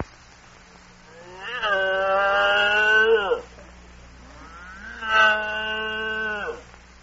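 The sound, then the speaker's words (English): A cow named Hildegard moos twice, each call a long, drawn-out, loud low bellow with a slight upward swell. A short pause separates the two calls, and a faint steady hum runs underneath. “I think this cow loves me.”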